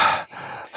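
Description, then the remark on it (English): A person imitates rapid, heavy gasping for breath, as after getting out of water, with loud breathy bursts at the start and end and a strained inhale between them. “Yeah, I remember that I got out and I literally started breathing like...”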